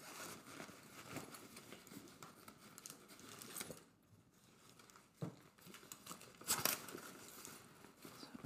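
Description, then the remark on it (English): A bag's zipper is pulled closed after everything is packed back into the bag, a steady rasping drag with a brief pause midway, then a final quick tug. No one speaks. “Zip that up.”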